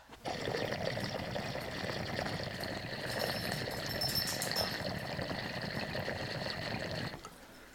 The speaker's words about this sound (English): Let's check this water level though first. Feels a little heavy. We're gonna just pour some of that on the concrete floor. Boom.